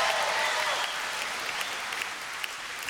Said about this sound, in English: I expected more applause for Jesus, but it's okay. I don't know if that's a, there we go. Jesus got some woos.